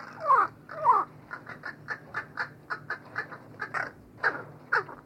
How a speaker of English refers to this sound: And a crow's song is particular to its social group. Studies of captive groups showed that each group develops distinctive sound elements that become a kind of cultural tradition, a dialect which crows use to recognize one another.